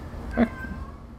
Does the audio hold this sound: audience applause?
no